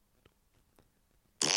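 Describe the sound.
A short, loud, raspy mouth fart blurted into a microphone after a second of near-silence, preceded only by a couple of faint soft clicks, with no talking.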